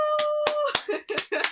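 A handful of sharp, irregular hand claps, about five, snap out over a steady humming tone and faint vocal sounds, moderately loud.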